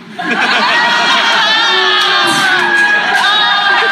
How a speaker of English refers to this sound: I don't mind a couple boos. You know what I mean? It's a reaction. I like reactions. I mean, that was one of the all-time greats.